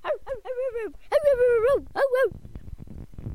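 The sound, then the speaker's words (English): A voice imitates Fido, a Webkinz bulldog, barking with four drawn-out, whiny yaps, the third longest, fairly loud, followed by a brief rustly noise once the voice stops. “That was Fido barking.”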